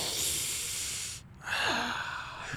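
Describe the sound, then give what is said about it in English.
A voice imitates heavy breathing at the end of a line announcing the movie Lust in Space: two long, hissy, rasping breaths, the second rising into a slight voiced moan, with no speech around them. “And then the breathing at the end.”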